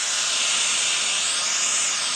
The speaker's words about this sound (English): Now that's white noise.